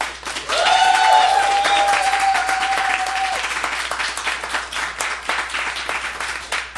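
A crowd bursts into sustained applause as an audience vote in a debate, dense clapping with a bright whistle cutting through early on, then gradually thinning toward the end.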